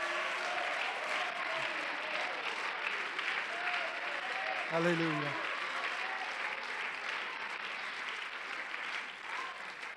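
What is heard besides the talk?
audience clapping hands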